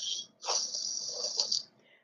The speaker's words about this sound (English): Father God, we hear this young man's breathing, oh God. Heavenly Father, we just ask that you touch his throat, his nasal cavity, his chest.